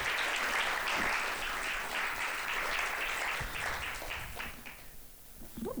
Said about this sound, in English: get a round of applause for that beautiful piece of art